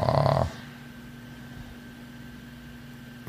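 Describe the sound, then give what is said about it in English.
A person gives a short, breathy, voiced yawn, lasting about half a second before falling into near silence with faint background hum. “is yawning, so let's continue our discussion.”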